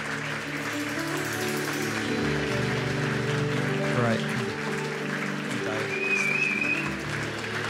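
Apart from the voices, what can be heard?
audience applauding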